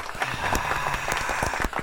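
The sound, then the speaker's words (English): A short burst of applause added in post-production: many hands clapping in a dense, crackling wash that stays fairly steady in loudness for the whole stretch, with no talking over it. “Yeah, can we do a round of applause in post, please?”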